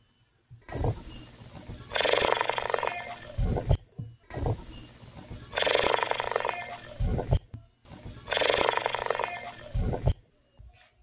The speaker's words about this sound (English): So picture that in your mind right now and check out this vocalization of a cheetah purring.